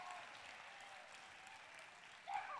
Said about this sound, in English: I think with all the stuff that Creation Fest have had to deal with the weather and all the other things I've had to contend with to get to this year, we should give them a bit of a cheer. Good job. They've done great, haven't they?